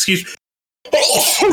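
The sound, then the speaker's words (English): A sharp, loud sneeze bursts out, followed by a brief silence and then a second noisy burst of breathy, sneeze-like sound. “No, that's just normal sneeze, I think.”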